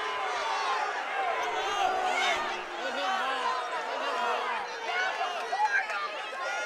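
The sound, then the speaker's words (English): Both crowds at a Kenesaw versus Heartland basketball game roar steadily throughout, a dense wash of many overlapping voices shouting and cheering at a fairly even loudness, with a few brief sharper bursts near the end. “Both crowds getting into it.”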